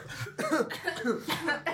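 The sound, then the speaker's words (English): A sick person coughs several times in quick succession, a short run of harsh, throaty bursts with brief gaps between them. “Yeah, but we still managed to somehow pull it off amidst all of our coughing and sneezing.”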